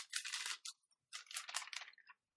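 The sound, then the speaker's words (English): Crisp rustling and crinkling of a paper note being handled and passed around, in two quick bursts separated by a short pause, bright and papery with no voices present. “But in the future, when I'm recording, maybe don't, it's good you don't talk, but maybe don't pass any pieces of paper around or anything.”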